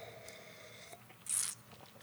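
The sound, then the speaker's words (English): A single quick sip of beer: one short, wet slurp midway through an otherwise quiet moment with faint background hum and no talking. “I'm going to have another sip because why not?”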